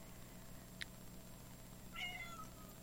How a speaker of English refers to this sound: Oh, a cat baby. Has an opinion on that. It's a cat named Denise. Yeah. Anise. Oh, Anise.